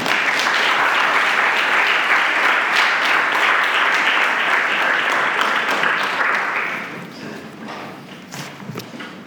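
An audience at a symposium applauds to welcome a speaker, a dense wash of clapping that holds strong for about seven seconds, then thins out and fades to scattered claps.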